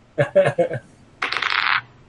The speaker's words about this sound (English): Well, you rolled a D8.